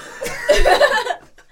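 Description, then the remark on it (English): A voice imitates a goblin's raspy, gurgling cough as it coughs up a tooth after a punch to the face, in one short burst of about a second, with a choppy, almost chuckling texture before trailing off. “Oh, the goblin kind of like coughs up a tooth.”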